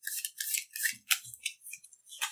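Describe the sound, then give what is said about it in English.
Plastic playing cards from an 8-card deck being shuffled and six drawn, a series of crisp, rapid scraping and flicking bursts with brief pauses between them, with no voices. “So we're going to shuffle those cards, all of our cards back together.”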